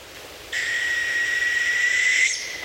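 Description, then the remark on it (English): A northern hawk owl, recorded on a phone during a morning walk near Denali National Park in Alaska, gives a single sustained, high whistled call lasting nearly two seconds, steady in pitch and fairly loud against a quiet background, with no voices present. “matched the call to a northern hawk owl, a medium-sized owl that lives in northern boreal forests”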